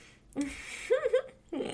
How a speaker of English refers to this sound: Oh, no, I have hiccups. Okay. Oh, no.